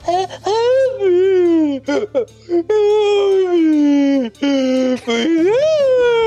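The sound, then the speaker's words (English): A loud, eerie wailing voice rises and falls in long, sustained, wavering cries, broken by a few short gaps, with no talking over it. “But just before we started, there was a sick, horrible wailing sound.”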